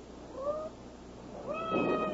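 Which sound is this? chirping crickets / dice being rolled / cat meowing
cat meowing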